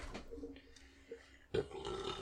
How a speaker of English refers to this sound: You're welcome. Everybody likes a burp.